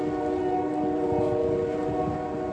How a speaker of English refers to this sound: So there's that train right on cue. Y'all probably can time the train when I'm out walking.